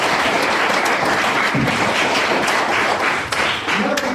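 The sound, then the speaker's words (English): A crowd applauds steadily, dense overlapping claps forming a loud, continuous wash of sound that holds evenly for a few seconds with a slight dip near the end. “Why don't you get to be a big round of applause?”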